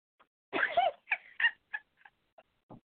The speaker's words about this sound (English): My damn cat trying to run in my room and shit.